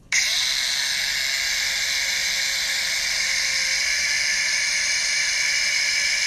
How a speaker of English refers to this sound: That's a drill? It is.